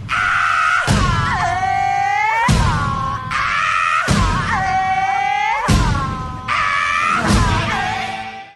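A pop song recording plays loudly, with heavy booming drum hits landing about every second and a half under wailing, sliding sung vocals that run continuously throughout.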